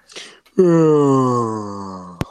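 A person gives one long, drawn-out yawn, starting with a breathy inhale and sliding into a loud, slowly falling voiced moan that fades over about two seconds, ending in a brief click.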